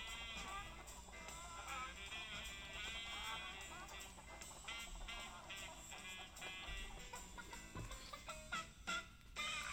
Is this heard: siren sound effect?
no